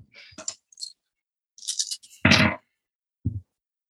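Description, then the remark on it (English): Six dice clatter and click across a hard surface in scattered bursts, with a louder rattling tumble partway through and a final small knock, with no talking. “All right, so that's six dice.”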